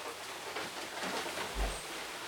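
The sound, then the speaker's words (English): Light rain starting to fall patters down in a steady, soft hiss, fairly faint and even throughout, with a brief low thump partway through and no one speaking. “And by the way, guys, it's starting to rain, so we're going to have to talk a little bit louder.”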